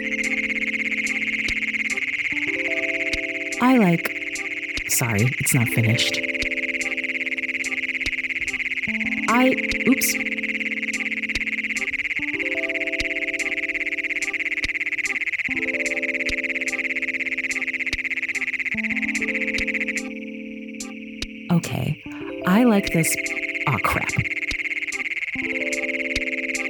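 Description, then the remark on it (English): A Great Plains Toad's loud, harsh, metallic trill drones on almost unbroken for about twenty seconds, pauses briefly, then starts again, with other frog calls and chirps sounding in the background. “The call of the Great Plains Toad is a loud, harsh, repeating chirp, which has been described as almost metallic.”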